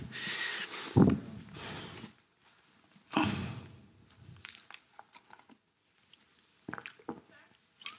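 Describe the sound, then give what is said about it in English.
Loud, wet gulping and slurping as someone drinks water, two long swallowing bursts followed by softer clicks and small gurgles, with no talking. “You hear my internal organs churning the water.”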